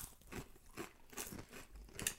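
Loud, crisp crunching of spicy ghost pepper chips being chewed, a series of uneven bites and crackles with bright, sharp bursts repeating every fraction of a second, no talking.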